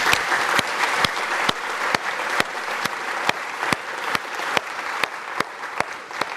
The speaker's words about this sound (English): Fantastically, we have them here. Another applause for that. That's just brilliant.